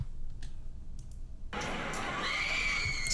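At a fight, after a quiet moment, a woman's shrill, sustained screaming breaks out over noisy crowd-like background commotion, rising in pitch and growing louder toward the end.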